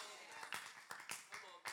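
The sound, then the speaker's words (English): A few sharp, irregular hand claps from an audience at a sermon ring out over a soft background murmur, with a short burst of applause-like clapping spread across a couple of seconds. “Oh, I feel like, what am I clapping about here?”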